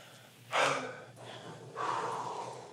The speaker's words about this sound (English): But first of all, we just want to catch our breaths. Y'all breathing all right back there?